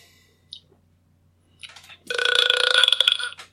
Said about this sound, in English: Oh, you want to hear me burp? Go ahead, give it a burp, and I'm gonna chug something to see if I can't get a good one.